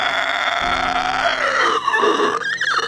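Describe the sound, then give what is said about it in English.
A long, drawn-out yawn close to the microphone, voiced and groaning, sliding downward in pitch before breaking into a breathy, wavering finish. No one speaks. “Sorry, I was yawning into the mic just then.”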